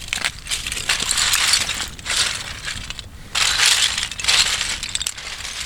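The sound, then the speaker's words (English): Footsteps crunching over big piles of empty oyster shells on an island, left to be picked clean by the sun and birds, a dense, brittle clatter that swells in loud bursts with each stride and dips briefly between steps, with no voices present. “This is what it sounds like when I walk over one of those big crunchy piles.”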